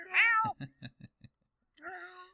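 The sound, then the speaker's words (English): A cat gives a loud, drawn-out meow, then a quick run of short chirping trills, followed by a second meow. No one speaks. “kitties.”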